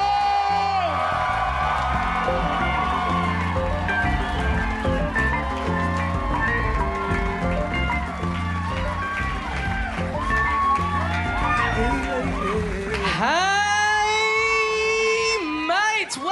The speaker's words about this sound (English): 300 episodes, please go absolutely crazy. This is it. Get the clapping going, get the cheering going.